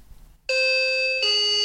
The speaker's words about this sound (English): Oh, I forgot I had the new doorbell fitted.